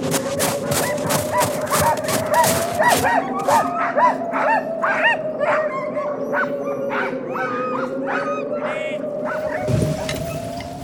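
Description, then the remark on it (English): A sled dog team, ready to carry vaccine to Fort Vermilion, barks, yips and whimpers excitedly in overlapping bursts, loud, with a steady high whine running underneath the whole time. “Doctor, the dog sled team is ready to take the vaccine the rest of the way to Fort Vermilion.”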